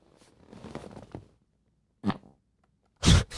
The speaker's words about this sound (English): What was that? Sound like somebody dropped a fucking box. Sounds like my butt just burped. Isn't that what it is, though? Basically. Just releasing air, right?